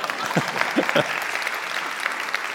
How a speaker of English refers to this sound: That was unquestionably an applause line right there.